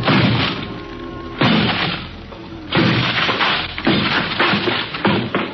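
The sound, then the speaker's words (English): A heavy barbell smashes four times into a thin wooden door until the door collapses over a desk: loud crashing blows spaced a second or so apart, each followed by a rough, splintering rumble, with no voices. “Four smashes and three torn ligaments later, the thin door collapsed over the desk, blocking it.”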